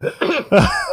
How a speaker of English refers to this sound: I was just trying to blow my nose, and then I like laughed while thinking about the image of that woman as a Klingon. It's just killing me.